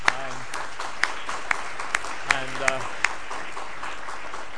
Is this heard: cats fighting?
no